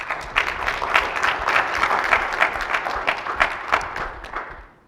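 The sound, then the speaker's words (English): An audience claps steadily for the performers up front, dense and sustained applause with sharp individual claps standing out, loud, tapering off at the very end. “Let me get some applause for these guys up here because they tore it up tonight.”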